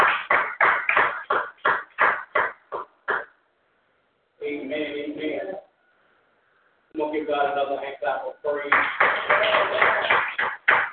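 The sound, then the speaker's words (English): An audience claps in praise of God in a quick, steady rhythm, then breaks off for a few seconds of loud voices before the brisk rhythmic clapping starts up again. “Let's give God a hand of praise.”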